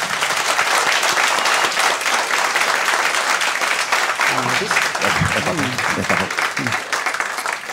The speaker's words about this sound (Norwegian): En liten applaus.